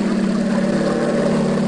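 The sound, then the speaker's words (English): A steady, droning propeller aircraft engine hums loudly and continuously as the plane flies low over people adrift at sea, with a strong low-pitched throb and a rough, buzzing texture that holds level throughout. “He's flying low, and he sees us.”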